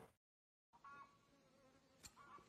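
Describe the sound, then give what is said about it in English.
A dense, steady drone of Japanese hornets buzzing around a beehive as a man protects his bees from them, several insects overlapping, after a brief moment of silence at the start, with one sharp click partway through. “It's called Man Protecting His Bees from Hornets. Oh yeah, the Japanese hornets.”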